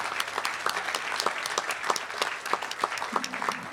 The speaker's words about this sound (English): So I want you to give yourselves and your peers in this tent a round of applause for getting through the last couple years and doing so well.